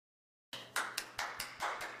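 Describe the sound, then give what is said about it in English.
A person claps their hands in a quick, steady rhythm, about seven sharp claps in a row after a moment of silence, with no one speaking. “I'm applauding.”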